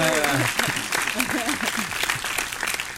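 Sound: applause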